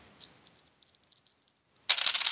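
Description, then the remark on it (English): Dice rolled during a tabletop game clatter in a quick series of light, high clicks, then a louder burst of rattling as they tumble and settle near the end. No one speaks. “My dice were just waiting until I really needed them.”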